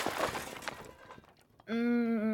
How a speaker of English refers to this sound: Crash! Bang! The car was flipping over as Ruby's stomach churned and twisted. Crunch!